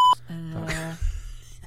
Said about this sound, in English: It's all right. Just bleep that out